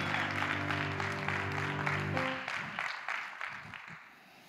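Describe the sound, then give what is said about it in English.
A crowd claps steadily, a dense patter of many hands, while a sustained musical chord holds underneath for the first half before the applause thins and tapers off. “Nobody can clap that.”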